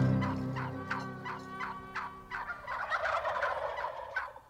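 A North American wild turkey gobbles in a loud, rapid burst of throaty, rattling notes, the pulses repeating quickly before breaking into a ragged, trilling finish, with no voices present.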